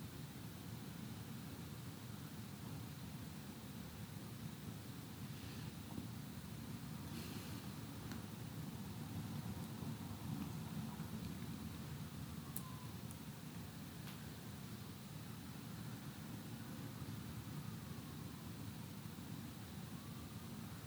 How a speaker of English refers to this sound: We've heard a motorcycle, a plane, sirens, the realities of a city.